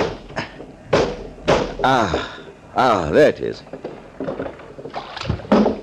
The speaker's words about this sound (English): Now, I'm going to open this window. The salt air will make you sleep like a top. The sound of the waves will lull you. Seems to be stuck.